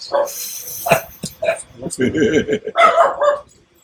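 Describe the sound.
Several loud dog barks ring out in quick, uneven bursts, some yippy and some deeper, with a voice mixed in among them before it falls quiet.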